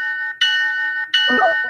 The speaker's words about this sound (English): I'm going to go with this ship bell.